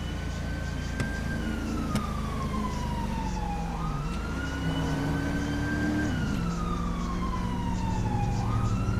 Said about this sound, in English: Sirens coming from behind me.